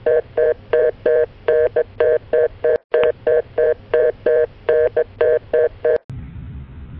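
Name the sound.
telephone keypad dialing tones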